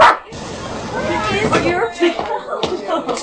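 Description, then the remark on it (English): A dog barks several times in short, irregular bursts, loud, with people talking over and between the barks. “What are you barking at out there?”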